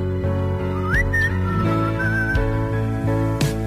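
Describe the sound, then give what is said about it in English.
A person whistles a short, sliding melody over a full band backing of steady bass and drums, the whistle bright and clear, weaving above the music for a few seconds. “Who's doing the whistling on there?”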